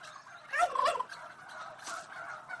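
A turkey gobbles in a quick, warbling burst of rapid throaty notes, loudest in the first second, followed by a softer trailing rattle; no one speaks.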